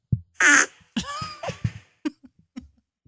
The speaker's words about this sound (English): All right, and that is going to be all the farts we have right now. So, I'm all farted out. That's all the farts we've got. Thank you to everybody that's sending their farts in.